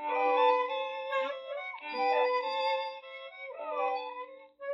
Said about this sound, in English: That squeak. It's driving me crazy.